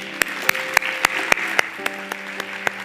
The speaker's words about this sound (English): Let's applaud this day.